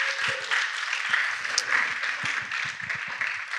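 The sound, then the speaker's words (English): A church audience breaks into steady applause for a pastor as he comes up to speak, many hands clapping together in a dense, continuous patter that holds at an even, moderate loudness throughout, with no talking over it. “you want to give him a round of applause as he comes up?”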